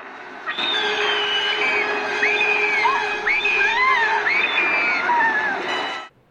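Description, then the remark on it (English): A man screams in fright on seeing someone pop up on the other side of an ambulance, a string of high, strained shrieks with rising and falling pitch, overlapping, lasting several seconds over a steady rushing background before cutting off. “and I don't care because this scream is just amazing.”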